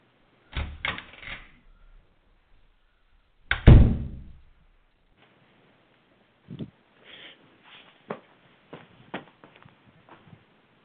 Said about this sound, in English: Along with the slow plodding footsteps along the hall and down the stairs. The front door.